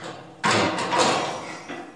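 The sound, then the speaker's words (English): A door slams shut with one sudden, loud bang, followed by a rattling, noisy decay and a smaller knock just before the end. No one speaks. “That's the door slamming.”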